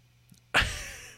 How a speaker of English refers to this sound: Was that an audible gasp?